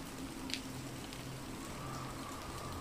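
Steady, dense rain hisses continuously with a blustery wash of wind whipping around a villa behind it, a single sharper drop or tap standing out briefly early on. No one speaks, and the downpour stays even throughout.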